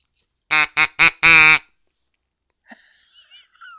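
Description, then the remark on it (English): A reedy, nasal duck quack blown on a green and yellow duck call sounds four times in quick succession, loud, the last note drawn out longer, followed by a few faint, thin squeaks. “There's my best duck quack.”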